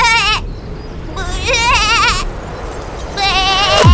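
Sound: goat bleating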